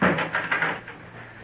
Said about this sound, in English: Come along, shut the door after you and forget it for a while.